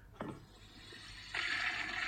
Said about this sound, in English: whatever wins gets flushed down the toilet into the drains of the City of London